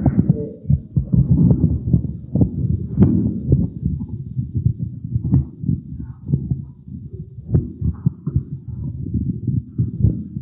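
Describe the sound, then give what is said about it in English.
Thunder rumbling in a deep, continuous roll that swells and fades, with soft throbbing pulses running through it and no voices over it. “Sounds like it's thundering, doesn't it?”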